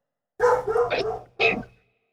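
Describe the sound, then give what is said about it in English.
A dog barks twice, a longer drawn-out bark followed by a short, sharp one, with a brief pause between them and no other sounds. “Wait, I hear a dog.”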